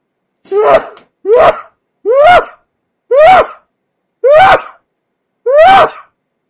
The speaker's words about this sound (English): So, Bless you. Yes, yes. I just covered my nose.